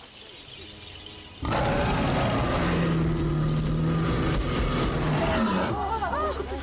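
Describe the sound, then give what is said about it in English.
A deep, rumbling big-cat roar, used in a film as a gorilla's roar, bursts in after a quieter opening and stays loud for several seconds, thick with rough growling texture and some clattering noise mixed in. “You know, a lot of the roars are actually big cat sounds. Like lions and shit?”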